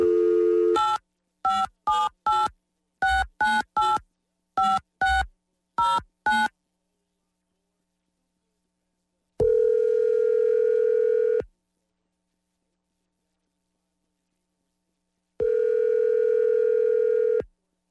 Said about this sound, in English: So Lance has given us Liz's phone number. So we'll call.